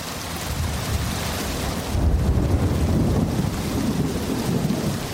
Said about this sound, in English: Rainy season in the forests of Ituri province in northeastern Congo. At its most torrential, a curtain of rain reduces visibility to a few meters. While uncomfortable for humans, the downpour is ideal cover for the okapi